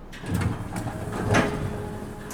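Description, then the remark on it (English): Elevator doors slide open with a smooth mechanical whir and a soft thud near the end as the elevator stops on a floor, moderately loud over a faint steady hum. “The elevator stops on a floor, and the doors open.”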